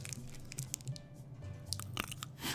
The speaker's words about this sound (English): Let me try to get a crunch on the Slim Jim here.